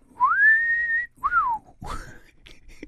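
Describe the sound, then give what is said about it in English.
A loud two-note wolf whistle: a long rising tone, then a shorter swoop up and down, followed by some brief muffled noise. “But I do know the audio equivalent of undressing somebody with your eyes is the wolf whistle.”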